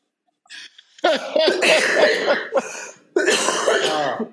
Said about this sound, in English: I hope our coughs are our all. Our coughs oh, are going to go away.